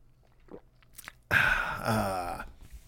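A few faint wet mouth clicks and a swallow, then a loud, drawn-out voiced "aaah" of refreshment lasting about a second, the way someone exhales after gulping down water.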